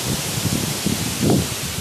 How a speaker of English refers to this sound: Woo, it's windy. Wowzer.